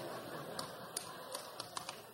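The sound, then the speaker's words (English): A few scattered, faint claps from audience members who have employees under them, sharp and irregular, about half a dozen spread over a couple of seconds against a low, steady background hum. “The people clapping have employees under them.”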